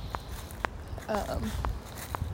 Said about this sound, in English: I'm not doing a great job of describing setting, but hopefully you hear things crunching under my feet.